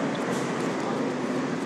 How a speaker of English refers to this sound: exiting the subway on our way up to Union Station to meet with the Wizard of LA.